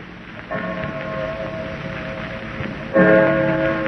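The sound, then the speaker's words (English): A clock strikes two o'clock, two ringing metallic chimes about two and a half seconds apart, each tone lingering and humming over a steady hiss of background noise. “Holy mackerel. 2 o'clock already.”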